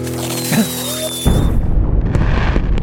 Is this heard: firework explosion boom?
yes